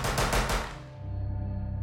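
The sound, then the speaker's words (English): A rapid burst of rifle gunfire as a killer fires from an open doorway into a bedroom: several sharp shots in quick succession, followed by a fading echo and a low, steady rumble. No one speaks. “But after taking a breath to steady themselves, the killer reached down with one hand, they opened the door, they stepped into the open doorway, raised their rifle, and began to fire.”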